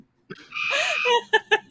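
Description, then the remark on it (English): A bird brought inside an apartment clucks: a drawn-out, rising squawk followed by three quick, evenly spaced clucks, fairly loud with no voices around it. “Oh, he brought that bird inside.”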